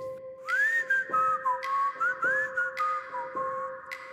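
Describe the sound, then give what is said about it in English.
A person whistles an old-timey song in the middle of the night, a lilting melody, clear and steady, the tune gliding up and down in short phrases with brief pauses, heard alone without any talking. “And I'm laying there, I'm looking at the ceiling, and I can hear somebody whistling a song. It was an old-timey whistle, like a”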